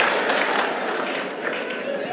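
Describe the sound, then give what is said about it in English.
Steady applause from an audience, a dense wash of many hands clapping at once, loud and unbroken for about two seconds with no clear individual beats. “A round of applause for my Akwaibom people.”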